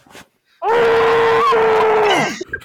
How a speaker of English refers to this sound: First off, I got to scream into my pillow here real quick.